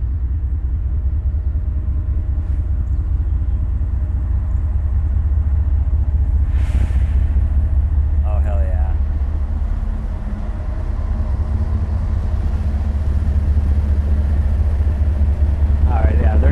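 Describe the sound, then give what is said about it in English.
A slow train rolls past with a deep, steady low rumble that holds its loudness throughout, while a voice briefly exclaims over it. “I feel like a train is coming, and it sounds like a slow one.”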